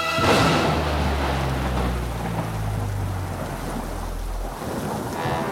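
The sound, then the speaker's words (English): A thunderstorm with a long, deep rumble of thunder rolling under steady, hissing rainfall, loud throughout, with no voices. “Four unsuspecting suspects at an over-the-top creepy old house and one conveniently bad storm is the recipe for a murder mystery you won't forget.”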